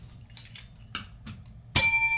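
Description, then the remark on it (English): A few soft clicks and rattles, then one sharp, bright bell ring that sustains loudly to the end, with a clear metallic shimmer and no voices. “Had to get my bell over.”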